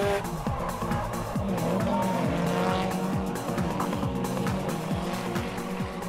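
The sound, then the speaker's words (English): A drifting car, its back end sliding, revs its engine hard and repeatedly, with sustained loud tire squeal layered over it, continuous throughout with rhythmic rises and drops in engine pitch. “Drifting is the art of sliding the back of a car.”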